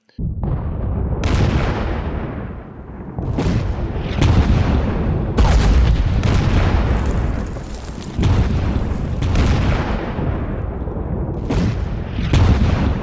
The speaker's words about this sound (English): On the 18th of May, the Turks began a long and slow artillery barrage that started at 1700 hours.